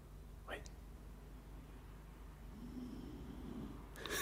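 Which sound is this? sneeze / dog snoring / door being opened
dog snoring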